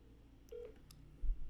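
A phone keypad tone beeps briefly, followed by a few faint clicks and a low thump, over quiet background hiss as a number is dialed to phone a mother for more information. No one speaks.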